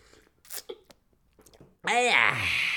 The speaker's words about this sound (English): Quick sip of water, folks. Water break, boss. Don't mind me, boss. Coffee break, rather.